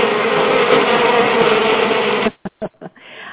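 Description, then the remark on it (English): A loud swarm of bees drones in a steady, continuous buzz, then cuts off abruptly, leaving a few short broken bursts and a quieter trailing hum. “And those are the little bees buzzing around in my bonnet tonight.”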